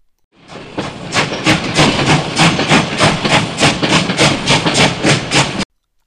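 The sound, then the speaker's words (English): A steam train arriving at a station chugs, its loud, rapid chuffs pulsing in a steady rhythm over a constant hiss and rumble, then cutting off abruptly. No voices are heard. “But Margot is a good sister, and she arrives early to meet Colette's train.”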